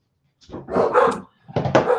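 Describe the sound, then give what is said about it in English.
A dog named Clyde barks twice in quick succession, each bark drawn out and fairly loud, with a brief pause between them and no one talking over it. “Whose dog is that in the background?”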